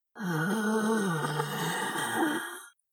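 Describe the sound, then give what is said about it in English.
A voice imitates a creature's angry moan: one low, rough groan with a snarling edge, held loud for about two and a half seconds, its pitch sagging and then lifting before it cuts off. “The light disappeared from the figure, and he heard it moan again, this time less desperate, more angry, like a snarl.”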